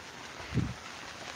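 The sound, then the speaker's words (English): Rain falls steadily inside a tent, coming down through the top of the tent, a soft continuous hiss and patter with one brief low thump partway through. “And then, if you can see the top of the tent when it goes to the end of the video, it's like rain just like coming down inside.”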